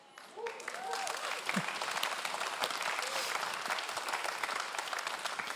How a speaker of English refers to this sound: And you can always find the finance people in the room because they clap the first and they clap the loudest when you say that. Right? They're like, debt free.